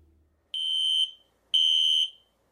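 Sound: fire alarm ringing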